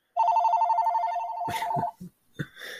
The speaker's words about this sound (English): good old phone.